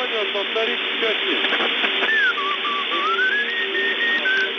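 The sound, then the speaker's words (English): Someone whistles Dixie slowly over a crackly, tinny intercepted Russian army radio channel, the whistle rising and falling above steady static after a brief stretch of a muffled, garbled Russian soldier's voice asking for something to be repeated. “A Russian soldier says he didn't understand something and asks whoever he's talking to repeat it, but then someone whistling Dixie interferes.”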